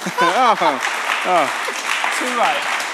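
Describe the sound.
An audience claps steadily throughout, a dense, even wash of applause, while a few voices call out with rising and falling tones over the top.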